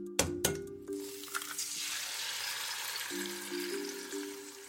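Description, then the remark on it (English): Two sharp metallic clangs ring out close together, then a steady, loud sizzling hiss like food frying in a hot pan carries on to the end, with faint ringing tones underneath. “Okay, so the second one was like two bangs against something metallic and then something sizzling.”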